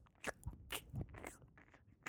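Someone chews a white chocolate and lavender ganache bonbon, with a quick run of crisp, crunchy bites and wet mouth sounds over about two seconds, fairly quiet and with no talking.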